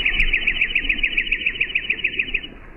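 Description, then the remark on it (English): A dark-eyed junco trill slowed down: a steady run of about twenty repeated chirpy notes, evenly spaced and fairly loud, lasting nearly three seconds with no voices. “Okay, dark-eyed junco, regular speed. Pretty fast speed at that, and at slow speed.”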